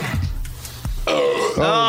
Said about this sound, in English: I'm not going to puke. I'm just going to burp.